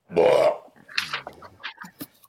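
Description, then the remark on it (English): A dog named Snots gags and retches on a bone: one loud, harsh, throaty heave followed by a run of shorter choking and hacking sounds that gradually fade. “What's wrong with the dog? Oh, he's just yakking on a bone.”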